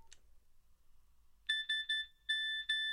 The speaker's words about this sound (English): You recognise that? That rings many bells. Literally rings a few bells. So that. Is the Nokia SMS text message. Yes. Do you know why it is that? I think I do. Okay. It's like a Morse code. It is Morse code.